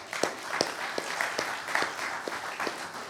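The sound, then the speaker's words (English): An audience claps for a team of volunteers in a steady, dense patter, with sharper individual claps popping out at a regular beat above the wash. It holds at an even, moderate level, with no voices. “Everybody give them a clap.”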